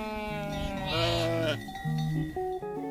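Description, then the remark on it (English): A single wavering sheep bleat rings out loud for about a second and a half, followed by a few short, steady musical tones. “That sheep looks pretty good.”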